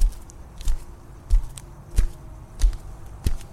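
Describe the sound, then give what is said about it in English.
Steady footsteps of people walking in silence toward a parking lot at an even pace, about six firm steps with a soft scuff on each, moderately loud, with no voices and only faint background noise. “We walked in silence a few moments before I began to part, heading for my car.”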